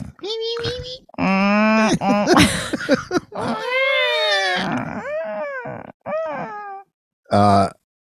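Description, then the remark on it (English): A voice imitates whale calls with a run of long, wavering moans and groans that swoop up and down in pitch, broken by short pauses, ending in a brief low grunt. “That was whale four.”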